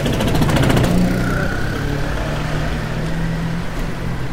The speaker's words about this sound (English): All right, so I'm just going to hop on your scooter here. There's probably some scooter sounds.